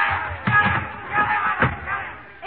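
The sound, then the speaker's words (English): An angry crowd shouts and clamors continuously against Emile Zola while several heavy thuds land at irregular intervals as objects are thrown at his house. “Oh, they're throwing things at the house.”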